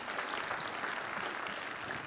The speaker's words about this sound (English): Are you thankful for that? If you're thankful for it, give the Lord a big round of applause. Thankful.